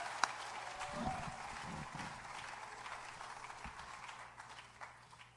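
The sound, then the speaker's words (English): A church audience at a morning service breaks into steady applause, dense clapping filling the whole stretch at a moderate level, with a few scattered louder claps and faint cheers mixed in before it starts to thin toward the end. “Can I get a round of applause for everyone that was part of that?”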